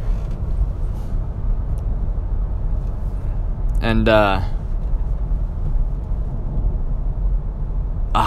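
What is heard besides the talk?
car interior road noise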